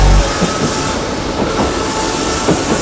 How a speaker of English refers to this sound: The train now approaches platform 1.